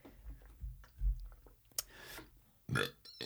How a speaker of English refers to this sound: Amazing, guys. Burps better than farts.